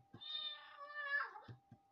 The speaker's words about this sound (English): What was that? What was what? That noise. Sound like a cat to me. I didn't hear anything. That's definitely a cat. I still don't hear it. Okay, I think it came from that box.